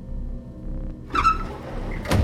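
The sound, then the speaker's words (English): A door between train carriages creaks open with a short, strained squeal as a conductor enters, followed moments later by a sharp thud, all over a constant low rumble of the moving train. “A door creaked open, startling me.”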